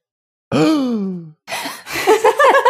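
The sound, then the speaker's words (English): A loud, drawn-out voiced gasp of surprise that slides downward in pitch, followed by a sharp breathy rush and then a burst of excited, wavering vocal sounds. “It's a gasp. Surprise a gasp.”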